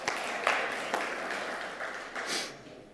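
A crowd applauds in a steady, dense patter of many hands clapping, with a few sharper individual claps standing out, sustained at moderate loudness for the whole stretch.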